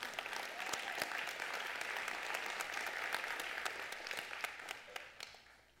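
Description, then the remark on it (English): An audience applauds for several seconds, a dense, steady patter of many hands clapping at once with a few sharper individual claps standing out, at moderate volume throughout. “You can clap for that.”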